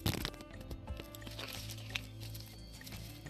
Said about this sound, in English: Last shuffle.